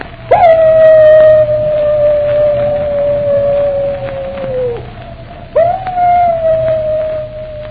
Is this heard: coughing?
no